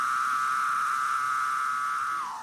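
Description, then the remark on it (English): A male cicada-like insect drones in one continuous, loud, high-pitched buzz, made by vibrating the timbal organs on the sides of its abdomen. The buzz holds a steady pitch, then dips slightly lower and fades just before the end. No voices are heard. “The males have a special organ on the sides of their abdomen. It's called the timbal organ.”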